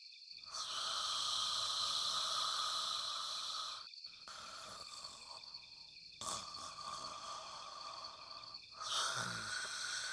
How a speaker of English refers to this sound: But instead, we heard snoring from the bedroom. How can anyone sleep through this? He laid on his back with his shotgun beside him.